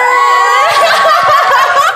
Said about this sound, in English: Can everybody cheer? One, two, go.